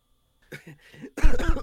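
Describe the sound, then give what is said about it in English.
A few short, throaty bursts lead into a loud, harsh cough right up close to the microphone, with no talking. “I farted when I coughed, dude.”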